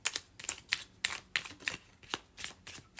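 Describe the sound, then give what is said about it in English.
A large deck of cards being shuffled in two sections, with a quick series of crisp riffling bursts repeating at a steady rhythm, bright and papery, with no one talking. “I have to shuffle it in two sections because there's so many of these cards.”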